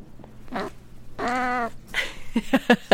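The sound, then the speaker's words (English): A female cat, about 20 years old, lets out a long, drawn-out moaning yowl, followed by a few shorter, chirpy vocal sounds and soft rustling. “It's like a moan from her.”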